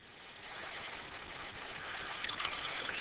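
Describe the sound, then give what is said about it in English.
Blue liquid pours steadily from one container into a tall, thin container, a continuous splashing trickle that grows slightly brighter and fuller toward the end. Moderately loud, with no voices. “When the liquid from one container is poured into the tall, thin container, he realizes that the amount of liquid has not changed and is still equal.”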